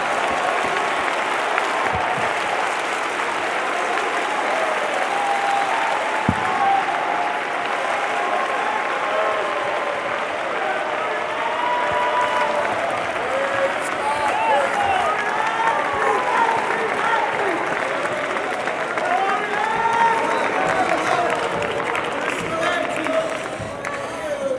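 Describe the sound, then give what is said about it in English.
A church audience claps unto the Lord steadily and loudly for about twenty-five seconds, the dense applause broken by scattered voices and a few sharper claps standing out above the crowd. “Clap your unto the Lord today.”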